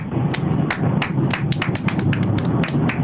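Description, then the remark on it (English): A brief burst of applause for a radio show caller, with sharp, irregular claps layered over a steady rustling bed for about three seconds, fairly loud and with no voices. “Spontaneous round of applause,”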